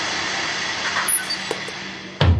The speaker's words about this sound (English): General Calamity in the driver's seat reluctantly swings open the vehicle door.